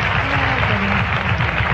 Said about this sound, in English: Patrice says, that's worth a little applause, isn't it? Bravo.